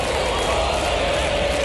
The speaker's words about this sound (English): Not quite the English crowd, but passionate, so you can hear it building now.